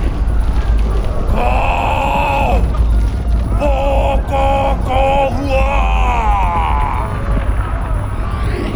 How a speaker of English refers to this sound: The ground shook, twisted and turned, bringing the warriors to their knees. Harawira exploded, sending fire and molten rock into the skies.